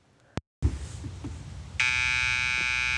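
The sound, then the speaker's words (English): A loud, steady electronic alarm starts blaring partway through, a harsh continuous buzzing tone that holds without pause, following a brief click and some low rumbling movement. “Huh, is that the alarm going off, Emmett?”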